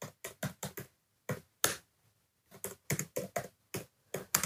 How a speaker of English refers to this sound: And if I go into Pinterest right now, wait for the aesthetic noise, the ASMR of me typing.